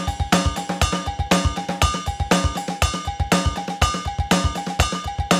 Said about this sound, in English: accenting the offbeats. Now notice the sound changes because of velocity. Softer, and the accents, I get that ride bell. So that's pretty cool.